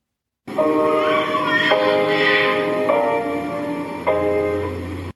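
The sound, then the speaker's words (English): Four sustained piano notes or chords strike at an even, unhurried pace, each ringing into the next, while a baby's thin, high wailing cries rise and fall over the music. “Even with that little baby crying in there, you hear the notes sound much better to our ears.”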